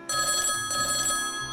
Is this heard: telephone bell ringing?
yes